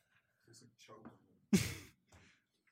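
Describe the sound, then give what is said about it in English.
Low, muffled vocal sounds give way to one sudden, loud, harsh cough, followed by a fainter spluttering breath, as a man has a coughing fit while choking on wild cherry Pepsi. “having a coughing fit here. He's choking on Pepsi”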